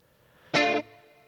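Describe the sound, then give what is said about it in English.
A single loud, bright electric guitar chord, doubled and thickened with chorus, rings for about a third of a second before cutting off into a faint reverb tail. “First, you got to double it up. Add a second guitar. And then add some chorus.”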